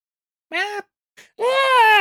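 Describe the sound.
A person imitates a kobold's roar: a short, high, strained yelp, a brief pause, then a longer, rising squealing roar, loud with no talking.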